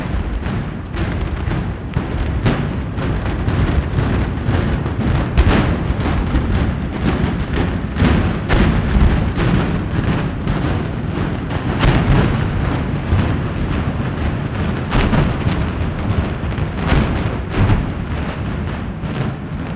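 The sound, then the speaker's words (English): A rapid, irregular series of loud demolition blasts from the TNT implosion of Texas Stadium, recorded from half a mile away, cracks out over a heavy, continuous low rumble, the explosions booming one after another for the whole stretch with no voices. “The problem with an implosion, and the thing that I learned when I recorded the implosion of Texas Stadium, is that it's louder than anything you've ever heard in your entire life.”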